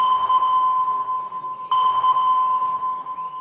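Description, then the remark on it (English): A weather radar ping sound effect, for radar that uses radio waves to detect precipitation, cloud rotation and wind: a steady, high electronic tone that sounds twice, the second ping starting abruptly midway and ringing on loudly with no voices. “Know that sound? It's radar.”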